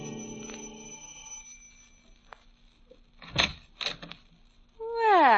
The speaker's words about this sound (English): Like the character who's ringing the doorbell of an apartment on the east side.